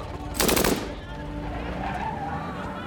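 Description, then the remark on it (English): A short, loud burst of MAC-10 submachine gun fire at a shopping mall, a gunman emptying its 30-round magazine, a rapid string of sharp cracks lasting under half a second, then a steady low rumble of background noise with faint murmuring. “a second assassin wildly empties the 30-round clip of his MAC-10 into their backs.”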